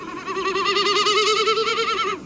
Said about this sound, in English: Next, a snipe produces a decidedly spooky warble that would sound right at home in an episode of Scooby-Doo.